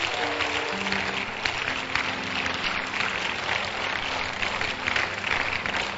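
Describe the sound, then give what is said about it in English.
A large crowd claps hands together in a dense, continuous wash of applause that holds steady for several seconds, with faint low sustained tones humming underneath. “Clap your hands.”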